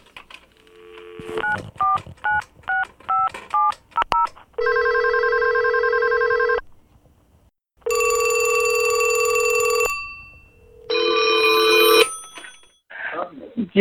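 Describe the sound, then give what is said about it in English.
A quick run of touch-tone dialing beeps, then several long, loud electronic telephone ring tones separated by short pauses, with no talking, before a voicemail greeting. “Do not call my phone. This is not Jermaine's phone.”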